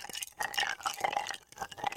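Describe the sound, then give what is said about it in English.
Wet sipping of iced matcha through a metal straw, with bubbly slurps and faint ice rattling in a cup, coming in a few uneven pulls with no talking. “You can just tell it's like ice with a metal straw.”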